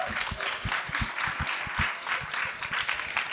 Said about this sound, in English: Can we give our panel a huge round of applause, please?